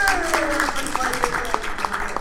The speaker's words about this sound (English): Let me tell you to continue to clap. This is my time.